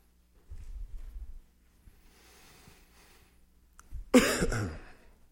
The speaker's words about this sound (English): I need a cough button.